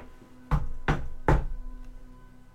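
Three firm knocks on a wooden door, evenly spaced, each a sharp thud with a short resonant tail, followed by a faint low rumble.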